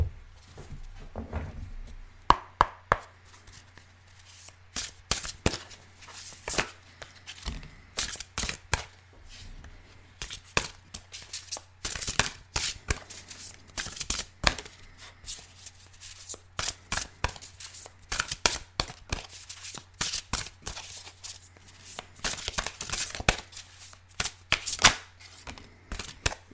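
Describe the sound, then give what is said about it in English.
A deck of cards is shuffled for a card reading for about half a minute, a long run of crisp, irregular flicks and slaps over a faint steady low hum, with no talking. “So, let me give this a little shuffle here, we'll see what comes up and what to expect for this week, or whenever you listen to this.”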